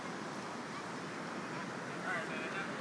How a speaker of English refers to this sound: Still plenty of waves. Non-stop waves.